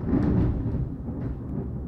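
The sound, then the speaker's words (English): A deep, rolling thunder rumble, loud and sustained for about two seconds, heavy in low bass with a rough crackling texture on top and no voices. “Here comes the lightning. And the boom.”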